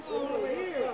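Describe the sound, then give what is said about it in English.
A crowd of people in the street at Hollywood Boulevard and Vine Street shouts up to Mickey and Judy Garland and waves. Several voices overlap in a steady, excited din, with rising and falling calls blending into one continuous crowd noise for about a second. “And there's a whole crowd of people right out here in the street shouting up to Mickey and Judy and waving.”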